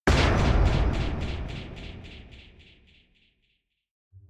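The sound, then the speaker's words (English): A single heavy steel door of a padded cell in a psychiatric hospital unit slams with a loud, booming crash that rings and rattles as it echoes away over a few seconds, followed by a faint low thud. “When the steel door to her cell slams shut, Marilyn cries and screams, banging her fists on the door.”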